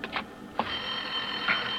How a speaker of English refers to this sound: Lorna, there's a phone.